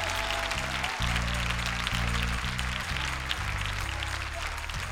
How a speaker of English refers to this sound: Somebody give God a rousing hand praise right now.